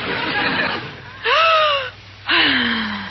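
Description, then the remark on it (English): Loud, deep breathing during yoga breathing exercises: a long rushing breath, then two drawn-out voiced breaths that groan and slide downward in pitch, with short pauses between. “Her breathing exercises, Maestro.”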